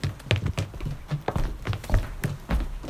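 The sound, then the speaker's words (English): Steady footsteps walk along a hard surface, each step a sharp tap with a low thud, keeping an even brisk rhythm with no voices. “And I've included footsteps.”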